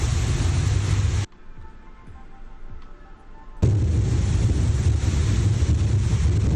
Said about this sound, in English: The social media user filmed the fast-moving storm sweeping through Vegas like a hurricane. Look at this. This is in the desert, ladies and gentlemen.